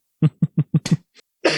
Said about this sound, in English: Sorry, I keep coughing. I should mute when I do that.